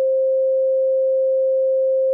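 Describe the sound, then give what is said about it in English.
A steady, pure sine tone holds at one mid-range pitch for about two seconds, smooth and unwavering with no other sounds around it. “Here's a sine wave.”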